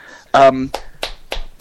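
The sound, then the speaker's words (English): A short vocal exclamation is followed by three slow, evenly spaced hand claps, sharp and fairly close, each ringing briefly before the next. “Firstly, we need to kind of collectively stand and applaud Broadchurch Episode 7.”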